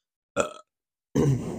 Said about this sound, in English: I got my burp, and I have my phone and my mic to record. And that marks 14 days straight of a burp on this podcast, which is, I cannot fathom how this is happening to this day.